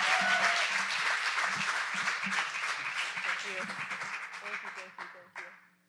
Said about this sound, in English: So let's give her a hand clap and a welcome this morning as she comes.